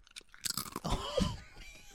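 Loud crunching of chips, a rapid cluster of crisp bites and chewing lasting a couple of seconds, with no talking.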